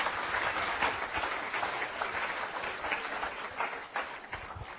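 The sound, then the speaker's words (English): An audience at a church service claps steadily, a dense, continuous wash of many hands without pauses, fairly loud and even throughout, with no voices standing out above it. “And if you are clapping, you must clap well also.”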